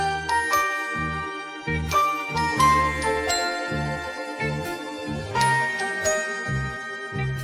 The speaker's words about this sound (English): Now, let's move to this cheery bell and vibe sample that I've taken most of the low end out of and increased the high end on.